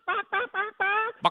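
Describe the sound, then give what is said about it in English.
A person imitates a chicken's clucking with a series of four nasal, harmonic bawks followed by a short sharp squawk, fairly loud with no other sounds. “I was bucking like a chicken.”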